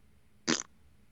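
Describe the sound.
A single short, loud raspberry, a farting noise made by a person sticking the tongue out and blowing through the tongue and lips, lasting only a fraction of a second against quiet background, with no talking.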